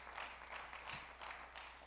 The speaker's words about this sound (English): let's clap for Jesus. Let's clap for freedom.